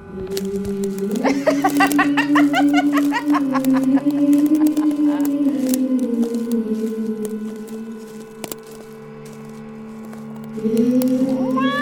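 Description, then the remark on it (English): A black cat yowls at night in one long, wavering, drawn-out cry that holds steady and loud, sags briefly, then swells again near the end, with no talking. “Black cat at night.”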